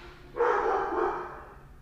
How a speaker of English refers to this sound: Once again, please ignore the background barking, because I don't even know what he's barking at. Like, I don't see anyone outside. I don't know what the issue could possibly be, but he just likes to start things.